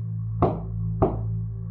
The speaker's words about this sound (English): The sounds were moving. Keeping her ear to the floor, she followed the thumps across the floorboards, up the wall, out her door, and down the hall, and there they stopped.